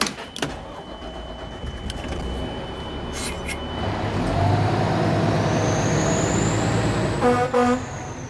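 A large truck rumbles along with steady engine and road noise, a high whine rising over it, then a short horn blast near the end. No one speaks.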